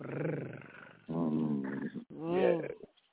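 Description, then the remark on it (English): A voice imitates a cat's purr in three loud bursts of throaty rumbling, with a brief pause between each, the last rising slightly before trailing off. “Let me know if you need that purr.”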